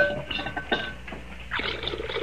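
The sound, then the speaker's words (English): Water pours into a basin with a steady splashing gurgle that swells toward the end, preceded by a few soft knocks and light clatter. “pour some water into that basin for me, will you, man?”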